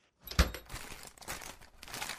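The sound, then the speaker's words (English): A plastic bag crinkles and rustles, opening with a sharp crackling burst, then continuing in a steady, irregular crackle for about two seconds, with no voices. “Keep it in the plastic bag for the lab boys, will ya?”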